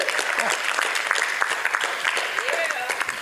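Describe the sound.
A crowd claps steadily for God, a dense wash of overlapping hand claps at a fairly loud level, with scattered voices calling out through the applause.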